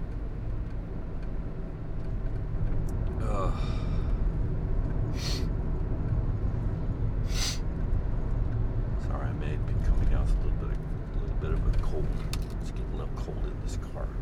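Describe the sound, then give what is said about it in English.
Steady low road rumble fills the cabin of a moving car, the driver's wife's car, with brief higher hisses and clicks passing over the continuous engine and tire drone. “By the way, I'm driving my wife's car today.”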